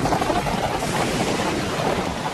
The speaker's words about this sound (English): every time there's horses riding by, it sounds like somebody shaking one of those like Native American rain sticks. Yeah, here, let's get the sound of those real quick.